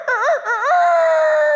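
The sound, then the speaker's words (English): A person performs a practiced imitation of a rooster crow with a loud, warbling vocal call: two quick wavering rises, then a long sustained note that slowly falls in pitch, lasting over a second. “Stood in front of the mirror and just practiced my rooster crow for you guys.”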